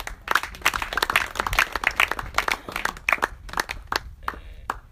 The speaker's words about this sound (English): But this year, there are a lot of people who are doing very well. Clap for yourselves.